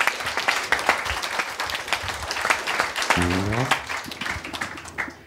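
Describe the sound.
A live audience applauds steadily for about five seconds for a performer brought back to the show, a dense, crackling wash of many hands clapping, with a brief voiced cheer or whoop rising out of it midway.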